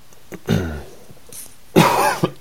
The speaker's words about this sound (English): Excuse me. I have this crazy cough all the weekend, probably contributing to my tiredness.